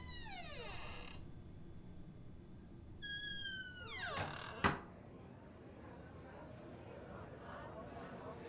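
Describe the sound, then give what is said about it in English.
A door leading into a larger space creaks open in two long, drawn-out groans, then shuts with a sharp knock. A low murmur of background noise continues underneath. “And another anonymous-looking door leads you into a larger space.”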